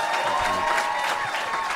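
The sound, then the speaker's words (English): A crowd at Good Chat Comedy Club claps steadily in dense, continuous applause for Matt Stewart and Aaron Cox, fairly loud, with the clapping filling the whole moment and no one speaking over it. “Let's give a big round of applause for Matt Stewart and Aaron Cox.”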